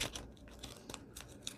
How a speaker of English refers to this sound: I have this little Buddha tea bag. And maybe I want to cut the top of it in a pretty little design. Let me get my scallop scissors. Scallop scissors. Okay. Yeah. And just come across the top.